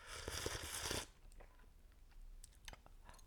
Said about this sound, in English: We got a cup of tea in front of us now. Well, each of us has one, you know. It's pretty. We don't drink from the same one. It's pretty like zen right now. I love it. Do slurp.